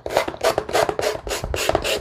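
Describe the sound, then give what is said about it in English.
A sanding block with multiple surfaces rasps back and forth over a painted edge to check for smoothness, in about seven quick, even strokes, each a gritty scrape, with no talking. “this particular sanding block has multiple surfaces, but you can get them with fine, medium, or coarse.”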